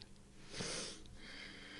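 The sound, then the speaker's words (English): Heavy, forceful breathing from a man during a martial arts demonstration: a long airy exhale swells up and fades, followed by another sustained breath, fairly quiet, with no talking. “Oh, he's breathing.”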